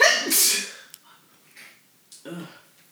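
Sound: sneeze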